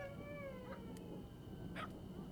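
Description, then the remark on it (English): Faint dog-like howling from the woods at night, with long wavering tones that slowly bend in pitch, broken by a few short sharp yips, all over a steady low background rumble. “But the sounds remind you of dogs. But the tone is not quite right. They sound more like men imitating dogs.”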